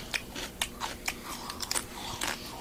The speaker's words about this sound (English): Burger's pretty crunchy, huh? It's that crispy lettuce. Just a mouthful of iceberg that lettuce. That high pitch. That's disgusting.